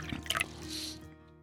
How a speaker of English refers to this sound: I'll pour you a drink.